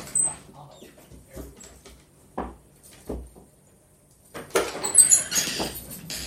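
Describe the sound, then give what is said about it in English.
Irregular light clicks of an old dog's toenails on a hard floor, spaced out at first and then bunching into a louder, busier patter of scrabbling steps. “Now, can you be quiet with your toenails on the floor for a second?”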